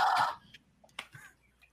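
A harsh, piercing Mayan death whistle screech blasts once for about a third of a second, then cuts off, leaving a few faint clicks and rustles.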